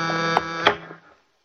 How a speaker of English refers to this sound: Then the switchboard began to buzz with an incoming call. It sort of brought me to my senses, and more out of a habit than anything else, I went out to answer it.